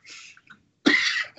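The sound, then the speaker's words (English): Two breathy coughs: a softer, hoarse one first, then after a short pause a louder, sharper cough with a harsh rasp, and the start of another at the very end. “Excuse me, I got the coughs for some reason.”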